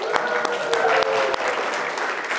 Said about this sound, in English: Everybody point at the tech team in the sound booth and cheer for them.